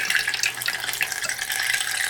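Photographic fixer solution (TF4) is poured out in a steady, continuous stream for about two seconds, a bright splashing hiss, with no one talking.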